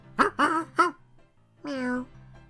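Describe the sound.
A person's voice imitates a cat: three quick, clipped mews in a row, then a short pause and one longer, drawn-out meow, fairly loud.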